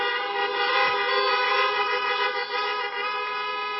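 Several car horns blare together in a sustained, overlapping honk lasting several seconds, loud and close, with a slightly wavering chorus of tones and no speech.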